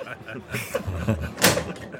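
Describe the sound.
A door is shut with a single solid thud about halfway through, fairly loud, with people talking around it before and after.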